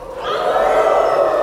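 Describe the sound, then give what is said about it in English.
An audience howls together like a coyote for a sing-along song, a sustained, overlapping chorus of rising voices that swells after a moment and holds steady and loud. “The other one is when the coyote howls. Can everybody howl for me?”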